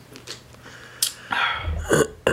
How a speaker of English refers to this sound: Let me, you know what I'm saying, hydrate first, though. Sipping the water.